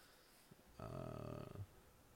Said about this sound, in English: I know, Kitty.